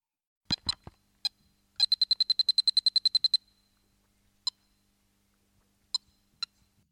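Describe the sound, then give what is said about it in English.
Bright electronic beeps from the Donkey Kong arcade game: a few sharp blips, then a fast run of about fourteen identical tones, followed by scattered single beeps with quiet gaps between, including a single lower-octave B that resolves to an E as the next level begins, with no talking. “This is another example of single tones sonically conjuring a cadential effect, with the resolution of this B to an E occurring as soon as the next level begins.”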